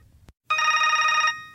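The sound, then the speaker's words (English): A single burst of telephone ringing as a man calls a woman's phone, a bright warbling trill that lasts under a second, clear, with brief clicks before and after and no voices. “so the next day he tried calling her.”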